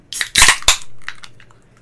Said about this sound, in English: This is the staple gun.